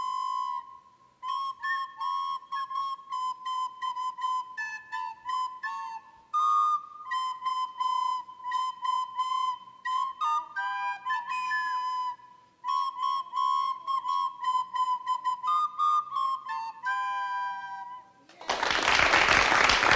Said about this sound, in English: And how old are you girls? I'm 10. That works. They're both 10. All right, you're going to play together. What are you going to play for us today? Jingle bells.